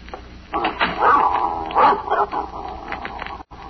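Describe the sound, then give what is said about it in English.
An old female dog barks and yaps in a quick, agitated run of sounds lasting a few seconds, with some whiny, whimpering tones mixed in before it cuts off. “I don't think your dog likes me”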